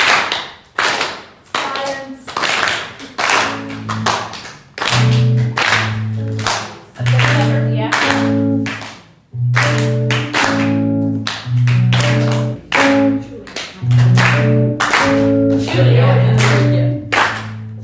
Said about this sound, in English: So if you could clap with me, so do what I do. So we're going to leave a space and we're going to clap twice. So space.